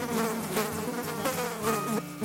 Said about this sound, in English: And so we all know that God sent those flies for a purpose, just to preserve our church, preserve the well-being of the members in our church.